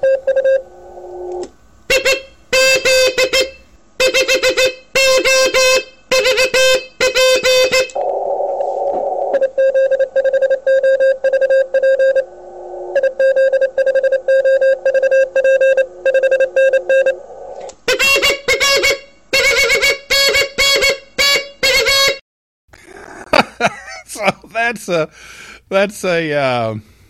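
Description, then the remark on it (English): A voice hums a steady mid-pitched tone in rapid on-off bursts into a keyed-down radio mic, mimicking Morse code (CW), with short and long beeps in rhythmic groups over a faint radio-like hiss, ending in a warbling sweep. “He just keyed down and used his voice as the CW.”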